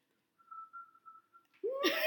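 Someone attempts to whistle and hum at once, producing a thin, wavering whistle in short pulses for about a second before it collapses into a loud burst of laughter.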